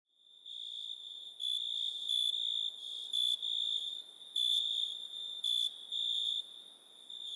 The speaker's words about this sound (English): The cricket noise.